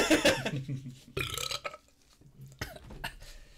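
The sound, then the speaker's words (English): A loud burp rumbles out in a long, gravelly stretch, followed by a couple of shorter, rougher belches with brief pauses between them. “Why are you always leaning to the camera when you burp?”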